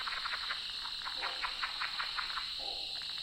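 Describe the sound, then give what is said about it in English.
In autumn at a marshy spot, a frog gives a low croak near the end, after a run of rhythmic pulsing calls, all over a steady, high-pitched insect chorus outdoors at night. “Occasionally, I hear low croaking sounds.”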